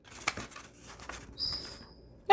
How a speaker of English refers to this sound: Now, yes, yes, I see it's too wide, so we're going to do something about that. All right, I'll trim it. Okay. Scissors. Okay, let's see if I can get the edge of it.